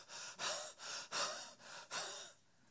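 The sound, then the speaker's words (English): A voice imitates heavy, out-of-breath panting: five or six quick, breathy gasps in a steady rhythm, fairly loud, before trailing off into quiet. “They're panting.”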